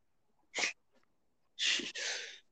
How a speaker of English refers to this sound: Yeah, sneeze because you have dirt on your nose.